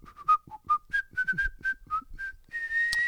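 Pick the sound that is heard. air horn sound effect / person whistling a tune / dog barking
person whistling a tune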